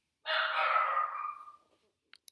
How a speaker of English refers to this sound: There goes my dog.